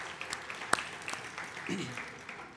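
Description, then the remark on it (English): An audience gives a round of applause for the mothers on Mother's Day, clapping steadily for a couple of seconds, a soft, even patter of many hands with a few sharper claps standing out, and a faint voice briefly underneath. “And give them a round of applause for the moms.”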